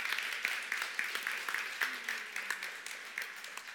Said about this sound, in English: So if I can invite our elders up to the front. Come on, you elders. Come on, let's give our elders a round of applause while they get up here.